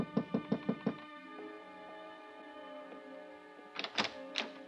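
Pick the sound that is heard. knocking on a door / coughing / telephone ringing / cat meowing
knocking on a door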